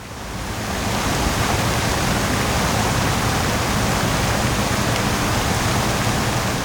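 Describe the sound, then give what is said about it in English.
A steady, dense roar of rushing water pours on without pause, loud, from several waterfalls thundering down from the heights in a lush tropical forest inside a biodome, fading in over the first second and then holding constant. No voices. “So tight was the security in the dome, Shreya and Balveer had to clear 5 such checkpoints before entering a lush tropical forest, complete with several waterfalls thundering down from the heights.”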